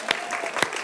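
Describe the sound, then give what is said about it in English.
A crowd claps for God, a steady, dense patter of many hands with a couple of sharper, louder claps standing out, lively throughout. “And let's clap for God.”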